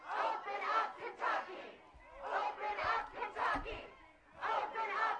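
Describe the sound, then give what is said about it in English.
A crowd of protesters in Kentucky chants and shouts in loud, rhythmic bursts during Governor Beshear's coronavirus press conference, voices rising together in repeated surges with brief dips between them, sustained throughout. “They were out there chanting.”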